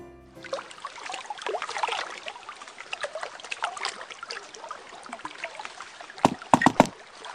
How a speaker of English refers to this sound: did you turn the ice storage into... a warm, bubbling bathtub of mulled cider? Yes, I did. Isn't it fantastic?